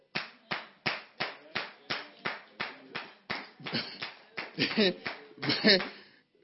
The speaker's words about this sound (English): See, only one person is clapping.